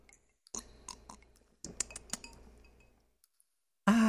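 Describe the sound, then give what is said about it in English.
Ice cubes clinking in a glass of cheap whiskey and Coke, a handful of sharp bright clicks in two short bursts, followed by a sudden loud rush of noise at the end. “I got a little bit of this cheap whiskey and Coke.”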